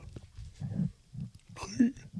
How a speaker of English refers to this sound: Quit yawning.